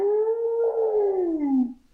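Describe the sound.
A human voice imitates a whale's underwater call: one long, moaning tone that holds steady and then slowly slides downward before fading out, with no other sounds.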